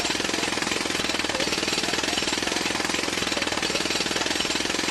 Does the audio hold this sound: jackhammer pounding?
yes